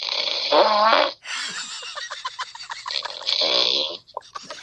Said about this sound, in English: my backup phone, powered it up, and held my backup phone up to my main phone while he was still snoring.